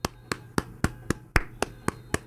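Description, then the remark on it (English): A single pair of hands claps steadily in applause for healthcare workers at 7 o'clock, nine sharp claps at an even, brisk rhythm over a low background hum. “So I want to add my applause.”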